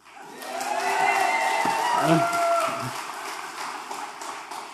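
An audience at a church sermon cheers and shouts together, a dense swell of many voices that builds in the first second, peaks around the middle, then slowly tapers off.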